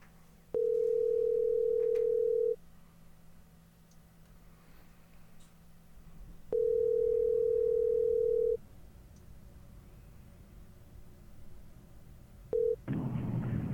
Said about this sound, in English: We're going to try calling him again. Now he's not picking up.